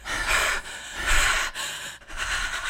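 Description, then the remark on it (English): Heavy, rhythmic panting into a phone by a little boy on a 911 call: four or five loud, breathy gasps in steady succession, harsh, with no talking. “He's just panting into the phone like he's a sex phone operator.”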